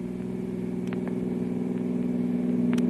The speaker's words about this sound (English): You mean those two cars? Well, they're racing. Looks strange.